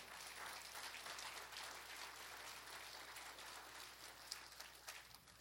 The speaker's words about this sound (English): We must give thanks to the Almighty. Shall we give a round of applause to our Lord Jesus Christ?